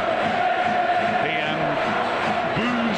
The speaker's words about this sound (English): Around three sides at the final whistle, but the Wrexham fans making a heck of a noise. An awful lot of Tranmmere fans seem to stay behind just to watch them.